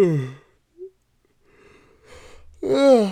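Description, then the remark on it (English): A drawn-out yawn from someone tired late at night: a long breathy inhale builds into a loud, wavering voiced groan at the end, preceded by a brief vocal sound and a short pause. “Oh my God, I'm yawning right now because it's late and I'm tired, but I'm out here grinding for the team.”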